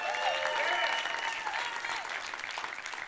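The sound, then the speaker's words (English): A church audience breaks into steady, dense applause at news that nearly 50 kids came to the youth group on a Sunday night, many hands clapping at once with a few cheers mixed in, the sound holding loud before tapering slightly toward the end. “And here's what the most beautiful thing, I'm going to pause every time you feel like clapping.”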